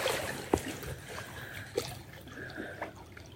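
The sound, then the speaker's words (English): Quiet lake water laps against a small boat in the morning, with a steady soft wash and three gentle slapping splashes spaced a second or so apart. No one speaks. “And what's the mood of the lake this morning?”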